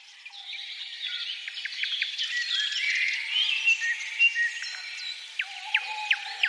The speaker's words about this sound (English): We take you now to a bird symphony at the break of dawn, deep in a forest in the heart of Poland. John Roche recorded the sounds as they echo through a nearby cathedral.